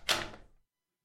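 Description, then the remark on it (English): A door unlocks and opens with a single sharp mechanical clunk that trails off in a brief rushing hiss, on its own, lasting about half a second. “Please unlock this door.”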